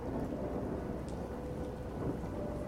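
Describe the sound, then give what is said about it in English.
Steady patter of light rain with a soft breeze rushing through trees in a cemetery, a continuous even wash of sound with a low rumbling undertone and no voices. “There's a light rain, there's a breeze blowing through the trees.”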